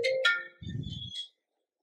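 A duty mobile phone ringtone sounds briefly, a couple of bright electronic tones followed by a low buzzing rattle, then it cuts off into silence. No one speaks.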